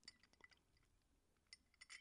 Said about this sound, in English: Sorry, you guys, a little ASMR. I'm taking sips of some coffee.